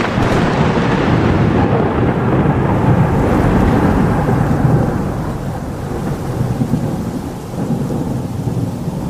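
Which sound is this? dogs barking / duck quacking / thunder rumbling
thunder rumbling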